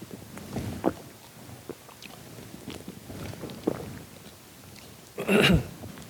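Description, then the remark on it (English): Someone takes a drink of water: soft scattered sips, swallows and small handling clicks, ending in one louder, breathy gulp or clatter. No one speaks. “And I think I'll take advantage of some water here.”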